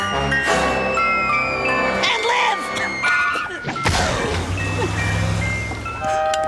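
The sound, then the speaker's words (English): A flying cartoon ice cream truck crashes down onto a beach among bathers: a busy swirl of jangling tones and sliding pitches, then a loud heavy crash midway, followed by a sustained rumbling, ringing aftermath. “Do not land flying ice cream trucks on the bathers.”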